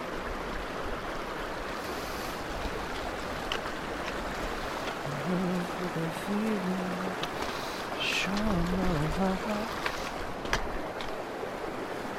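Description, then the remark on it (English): Steady rush of flowing river water fills the whole recording, with a few brief voiced murmurs from people partway through as someone wades across the river over stepping stones at the first major river crossing. “The first major river crossing.”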